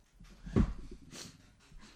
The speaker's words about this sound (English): Well, I opened a beer for those who wanted to hear it.